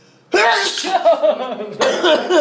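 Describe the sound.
A loud sneeze bursts out, followed about a second and a half later by a second sharp sneeze, with breathy, voiced trailing sounds between them.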